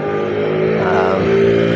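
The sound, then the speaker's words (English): A car engine hums steadily, its tone swelling slightly as it accelerates through busy night-time street traffic on the beach side of Miami, with no voices over it. “So, yeah, I'm looking at the traffic and what people do and trying to adapt to situations as they come along.”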